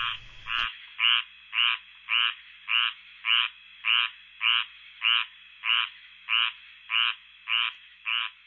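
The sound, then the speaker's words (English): A squirrel tree frog, a frog native to Georgia, calls in a steady series of about fifteen raspy, nasal notes, evenly spaced roughly half a second apart, loud with nothing else behind it. “That was the squirrel tree frog.”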